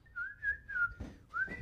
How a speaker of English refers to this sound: Please don't fucking whistle.